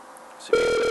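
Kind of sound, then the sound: signal or alarm, telephone dialing tone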